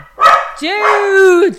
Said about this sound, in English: Dude! I don't even know what he's barking at.